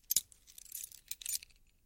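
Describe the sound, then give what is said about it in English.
Metallic jingling and scraping, fairly quiet, as a key slides into the lock of an apartment door with keys clinking on a ring, in a few short bursts over about two seconds. “I inserted the key,”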